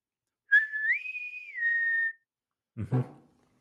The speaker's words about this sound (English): The trailer opens with a bosun's whistle, like in the Undiscovered Country.